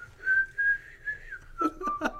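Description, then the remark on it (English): Someone whistles a short, wavering melody of clear, sustained notes, with a few soft background knocks or rustles near the end and no talking. “You know, they're just sort of standing there in a queue to get to the ATM, and one of them's whistling, just...”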